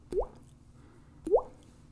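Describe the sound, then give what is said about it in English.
Two wet, plopping drip sounds made by mouth, imitating water dripping from a leaking roof, spaced about a second apart, each a quick rising pop, fairly clear against a quiet background. “Anyway, the constant dripping.”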